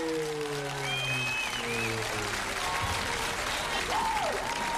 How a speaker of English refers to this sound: You know, I don't know what I love more, the applause?